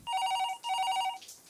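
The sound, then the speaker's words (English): A telephone rings with two bright electronic trilling bursts, each about half a second long, separated by a short gap. Loud, with no one talking. “Phone's ringing.”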